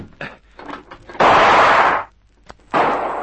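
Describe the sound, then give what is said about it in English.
Revolver gunshots fired at a house, one shot coming through a window: a few faint pops, then two loud, harsh blasts, each trailing off in a rough, noisy roar. No voices are heard. “That shot came through.”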